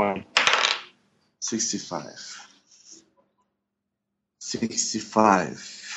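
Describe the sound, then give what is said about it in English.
Dice clatter and tumble across a tabletop in a few quick bursts, fairly loud, separated by a brief silence, with people talking around them. “Let me try another dice.”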